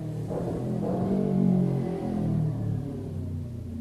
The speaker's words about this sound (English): And in the sound of the motorcycle, dissipates.